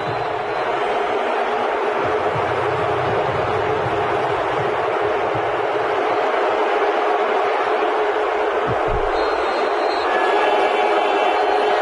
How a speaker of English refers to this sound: It's just booing. It's just booing.